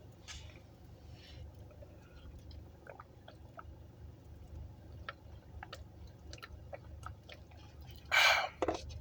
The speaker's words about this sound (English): Sorry. I needed to take a sip of my beverage.